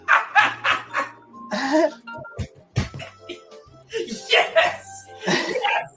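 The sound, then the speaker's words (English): A dog barks in a run of loud, sharp bursts spread across a few seconds. It sounds slightly tinny, playing from a video of a dog wearing sunglasses, with voices mixed in. “How about a video of my dog wearing sunglasses?”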